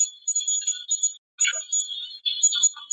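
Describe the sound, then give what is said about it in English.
A temperature alarm sounds: shrill, high-pitched electronic chirps in rapid warbling bursts that stop briefly partway through, then start again. No one speaks. “You hear the temperature alarm go off and then you hear truck.”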